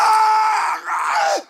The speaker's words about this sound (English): Yeah, so you get the echo off the walls and stuff. Yeah. Mm-hmm. Mm-hmm. Oh, it's a terrible scream though. I don't like it.